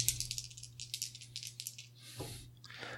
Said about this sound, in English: I'm rolling that. That's a D10 there.